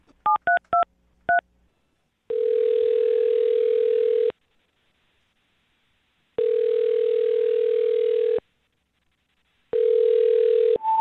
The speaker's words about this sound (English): we're going to dial Oscar's phone number right now and see if we can get him on the phone